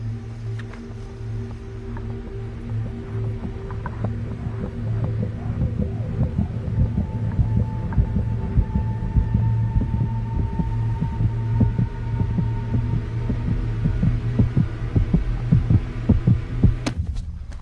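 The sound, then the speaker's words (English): A steady, pounding heartbeat thuds in a regular rhythm over a constant low droning hum, with no talking, growing slightly louder toward the end. “My heart's pounding right now. Can you hear it?”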